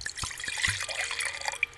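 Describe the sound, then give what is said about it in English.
Fresh wine from a newly opened bottle, the ninth bottle, pours into a glass, a bright gurgling splash with a few quick glugs and small ringing tones as the liquid fills, heard alone without talk. “Oh, that was a nice pour”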